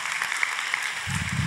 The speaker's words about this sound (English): You can clap at that moment. Thank you so much. You're so kind.